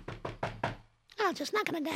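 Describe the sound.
Four firm knocks on the wooden back door of a closed furniture store in a steady rhythm, fairly loud, followed after a short pause by someone speaking.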